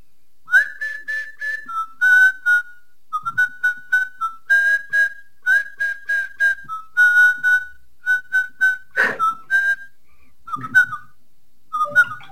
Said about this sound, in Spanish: Pero sí, lo del silbido sí.